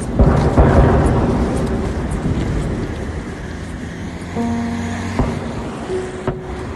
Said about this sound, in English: Floods of people have been crossing over the river, and you can hear outgoing artillery fire from the Ukrainian side.